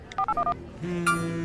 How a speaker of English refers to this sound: One that I want to play for our listeners, because, of course, they are public media nerds, many of them, is your character Diane's ringtone. Here it is.